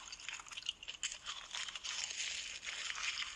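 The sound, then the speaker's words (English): Crisp crunching of a woman eating crunchy seaweed with chopsticks, a continuous run of brittle crackles and bites lasting a few seconds with no talking. “Now she's putting in the seaweed. Oh, this is going to be a nice crunchy noise.”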